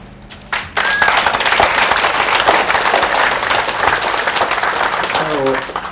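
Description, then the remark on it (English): An audience seated under a tent on a hot afternoon breaks into loud, steady applause after a brief pause, a dense wash of many hands clapping that holds strong to the end, with a few voices calling out over it. “So I want to applaud you for coming.”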